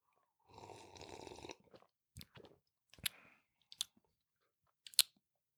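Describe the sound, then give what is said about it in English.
A noisy slurping sip of stout beer is followed by four or five short, irregular gulping swallows with wet clicks as the drinker chugs the whole drink. Nobody speaks. “I shouldn't have chugged my whole thing just now.”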